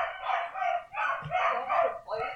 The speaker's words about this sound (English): Hey, Frank, will you take those dogs outside? Because they're barking like crazy.